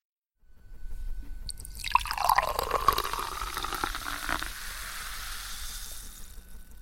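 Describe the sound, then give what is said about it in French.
Champagne is poured into glasses, a steady gurgling stream with bright fizzing that swells, then settles into a softer, continuous hiss of bubbles. No one speaks. “Toujours pas de champagne?”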